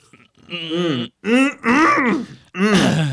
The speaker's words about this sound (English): Oh. Are you clearing your throat? Yeah. Just really clear it out over there.